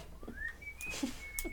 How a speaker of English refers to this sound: whistle something.